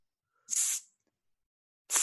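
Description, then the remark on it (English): Someone imitates the hiss that theme park cast members used to get each other's attention across the park, making two short, sharp, airy bursts with a pause of about a second between them. The second hiss gets cut off. No one talks. “So the thing is, Circus, Fantasyland, Tomorrowland started doing it because they wanted to be cool, but you can hiss across the park, and that's how we got each other's attention.”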